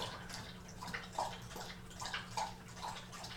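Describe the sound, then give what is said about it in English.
A dog laps water from its water dish: wet, rhythmic lapping and slurping, a steady series of small splashy licks repeating roughly every half second, with no talking. “I didn't think about the fact that recording right next to the water dish was really the best idea.”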